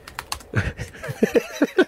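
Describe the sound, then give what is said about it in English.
Irregular keystrokes on a computer keyboard by a man typing with two fingers, a quick run of separate taps with uneven gaps, like hunting and pecking rather than touch-typing. “Typing there. He's typing with two fingers, by the way.”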